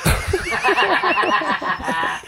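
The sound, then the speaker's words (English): A Budweiser Clydesdale horse lets out a loud whinny, a shrill, rapidly wavering call that quivers for about two seconds before trailing off, with no voices. “We've got the Budweiser Clydesdales. Those are the horses.”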